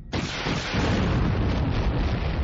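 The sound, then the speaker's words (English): Two shadow bombs explode among coral skippers: a sudden, loud explosion bursts in, then gives way to a heavy, sustained roaring rumble that keeps going without fading. No voices are heard. “The coral skippers blossomed into energy. Once the afterwash of the explosion had passed, Jade Shadow slowed and leveled out.”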